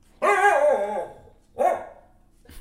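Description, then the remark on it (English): A dog named Marley barks twice, a long drawn-out bark sliding down in pitch followed by a shorter, sharper one, with no talking in between. “Right on cue. Marley concurs.”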